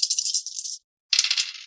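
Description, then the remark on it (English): Dice are rerolled, rattling in two bursts: a steady clattering shake of under a second, a short silence, then a second rattling roll of similar length. Bright, clicky, and fairly loud, with no voices. “You are a bunch of bastard dice, and I'm tempted to put you right back where I found you and take others.”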